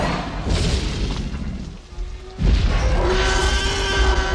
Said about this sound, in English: Then all of a sudden, there's the scene in Jurassic Park. The kitchen? Where we hear the thump. Oh, the T-Rex? Thump.